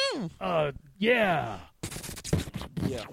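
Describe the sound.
A voice imitates explosions: first a few falling, whistling tones, then a run of loud, rough, noisy bursts made with the mouth, like booms and blasts.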